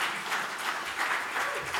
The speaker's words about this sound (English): Can we give God a hand clap of praise for the victory?